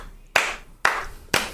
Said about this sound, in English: Yay! I'm gonna clap for myself. I feel so supported.